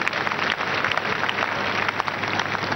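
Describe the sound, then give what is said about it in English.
A church audience applauds a member who has just answered a question. Many hands clap in a dense, continuous patter that stays at an even, fairly loud level throughout, with no voices standing out. “Let's clap for him.”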